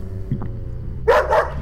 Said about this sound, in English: Oh, my heavens! A group of men are holding a large angry dog on a leash.